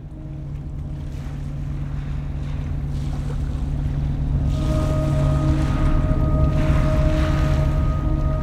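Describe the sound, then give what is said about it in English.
A boat motor drones steadily as the hull skims across water, with a constant low engine hum, rushing spray and wind building gradually louder over several seconds. “Hours pass as we skim along the water, and all the while, the strata draws nearer.”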